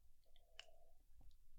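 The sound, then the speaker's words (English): A quiet sip of coffee: a soft slurp with a small wet click of the lips, brief and faint, with no talking around it. “… in Philly, coffee sip, asks a few questions.”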